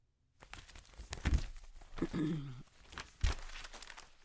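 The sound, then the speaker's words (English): Sheets of paper holding interview questions are shuffled and handled, with crinkling rustles, a couple of sharp flicks and a brief murmur of a voice in the middle. “Shuffling paper.”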